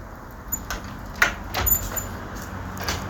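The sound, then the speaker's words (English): A door lock being turned again, with a few short metallic clicks and clunks spaced over a few seconds against a low, steady background rumble. “So they are relocking the door now.”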